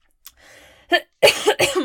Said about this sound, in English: Cough.